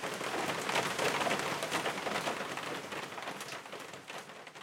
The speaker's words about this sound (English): we drifted to sleep, cozy in our down bags, to the patter of rain on the old tin roof.